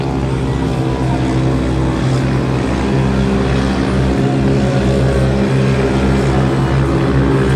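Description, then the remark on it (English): A loud off-road race car engine, Lexton Hendricks's car during a race, roars steadily at full throttle on a step-up jump, its dense, buzzing drone holding at high revs throughout without letting up. “Hendricks absolutely on the throttle on that step up, almost clearing the limited class car.”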